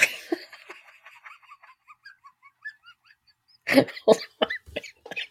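After a quiet stretch of faint, scattered chirpy tones, two or three harsh coughs burst out in quick succession, followed by a few rougher throaty sounds.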